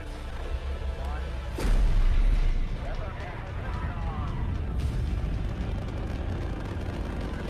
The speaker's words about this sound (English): That's a rocket. That was a rocket. That was a rocket.